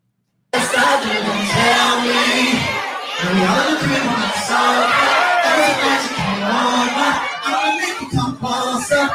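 A dense crowd at a concert, people without masks standing close to the performing singer, roars and cheers without letup, many voices shouting and whooping together at a steady loud level after a brief moment of silence.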